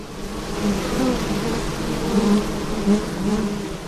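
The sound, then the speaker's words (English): A dense, steady drone of many honeybees buzzing around Territory Bees beehives on a farm at Middle Point, fairly loud, with wavering pitches overlapping continuously and no voices. “we've got some pumping beehives here, and they're located on a farm here at Middle Point”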